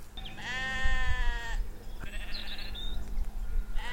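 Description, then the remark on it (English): A sheep bleats loudly, a long wavering baa with strong harmonics, followed by a second shorter bleat, over a low steady rumble of outdoor background noise at a tranquil riverside spot in East Sussex, England. “And the animals were not at all wild. They were nearly all sheep.”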